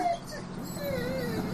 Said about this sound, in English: Dog still whining about tent.